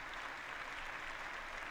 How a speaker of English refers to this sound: That it feels good to get those claps, McCarthy. Right?